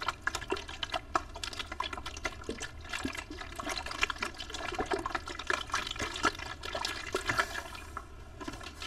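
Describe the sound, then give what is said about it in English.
Soft water sounds trickle and splash continuously, with small crisp clicks and taps scattered throughout at a steady, quiet level and no voices. “Hello guys, today we will be doing water ASMR.”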